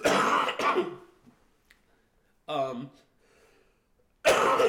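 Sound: cough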